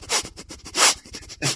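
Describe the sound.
A person sniffs slowly and deliberately, drawing in air in three breathy, hissing pulls with short pauses between, as if smelling something. No talking.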